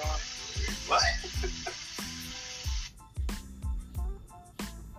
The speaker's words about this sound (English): I was just going to tell you to mute your fucking phone so we don't hear that water and shit. But. No. You gonna hear this water? It's like some holy fan shit.